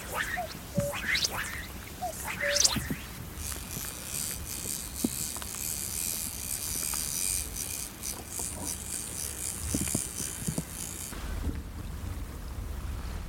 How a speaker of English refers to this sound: Just the sound of the cuckoo echoing around this lock.